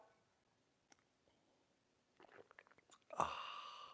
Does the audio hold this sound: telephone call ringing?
no